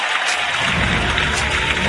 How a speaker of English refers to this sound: Round of applause for Chef Helly.